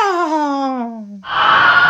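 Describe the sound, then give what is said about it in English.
A loud, wordless wailing howl, presented as the voice of the yawning maw at the opening of the Ginnungagap, slides steadily downward in pitch, then breaks off into a harsh, breathy roaring rush that fills the last moments. “And I want you to just, I want to take a moment of silence here so we can hear the wordless voice, the scream, the howl.”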